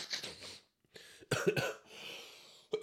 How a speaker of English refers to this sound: This is going to be a mad episode again, the sniffling thing.